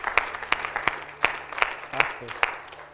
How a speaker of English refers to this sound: Can we give the Lord a clap offering this morning? Amen. Hallelujah. Hallelujah. Hallelujah.